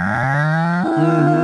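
A cow moos once, a loud, drawn-out low call lasting over a second that steps slightly higher in pitch partway through, with no voices.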